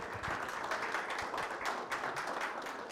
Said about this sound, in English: Come on, that's good. Y'all can clap for that. That's good.